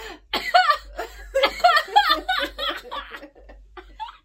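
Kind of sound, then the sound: human body sound, person coughing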